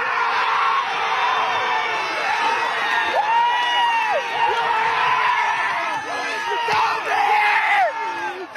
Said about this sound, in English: Screaming and cheering, and that's what it is, and it's great at that.